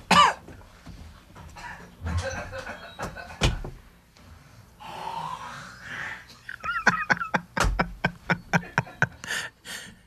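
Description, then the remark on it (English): Someone coughs and hacks repeatedly, with heavy bursts early on and a rapid run of sharp, choking coughs toward the end, coughing up a mosquito they inhaled. “It did go down my throat. I coughed it up.”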